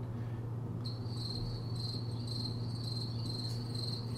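Crickets chirp in a steady, high-pitched trill that starts a moment in and continues unbroken, with a faint low hum underneath and no voices.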